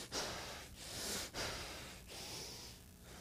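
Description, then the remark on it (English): A person breathes heavily and hard, close and loud, with about five rasping inhales and exhales in a steady rhythm, deliberately imitating labored breathing. “This word literally means passion, as if breathing hard.”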